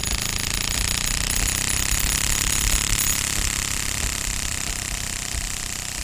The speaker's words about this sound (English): And, you know, finally, as you really ramp up that card that's in the clothing pin, it makes almost sound like a lawnmower.